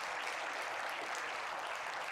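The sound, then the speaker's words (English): An audience claps together in thanks for what God is doing, in sustained, steady applause, a dense wash of many hands with no pauses, moderately loud and without voices. “Can we just give a clap and a thank you for what God is doing there?”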